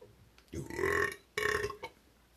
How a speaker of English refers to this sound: Tell you what, that burp, crisp, clean, and proper. It was, actually. That was a proper man's burp right there. I felt that. You know, a little gurgly. Yeah. It came from the depths. That was a gentleman's burp.